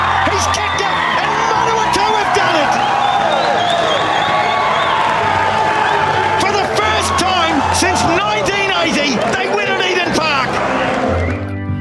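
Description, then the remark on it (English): A large rugby crowd at Eden Park cheers in a loud, unbroken roar after a replacement forward scores by the post, many overlapping voices swelling with shouts and whoops, with sharp bursts of clapping scattered through the whole stretch. “Well, you listen to the effects there, and you'd be thinking that there was a massive crowd there at Eden Park to witness that piece of Manawa 2 rugby history, but there wasn't.”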